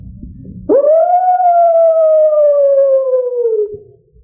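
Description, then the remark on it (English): A person imitates a coyote call with one long, loud howl that swoops up quickly, holds for about three seconds, then slowly sags in pitch, with only a low rumble before and after. “Give them a coyote call.”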